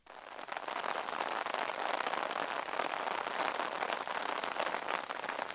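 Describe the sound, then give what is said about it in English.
Steady rain pours down, a dense, even hiss of countless drops pattering on a surface, continuous from start to finish with no voices. “Yes, that one is obviously Rain.”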